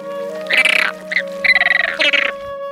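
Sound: flamingo calls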